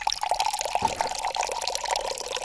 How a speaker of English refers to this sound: To make your infused water, it is so simple. You get a glass pitcher. You fill it 3/4 full with filtered water.